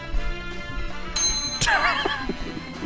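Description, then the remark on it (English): A bell dings twice in quick succession, bright and ringing, over a steady musical background, with faint voices stirring after the second strike. “I hesitate on the bell.”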